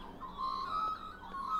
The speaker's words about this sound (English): I hope those birds in the background are so great for you, because I love them.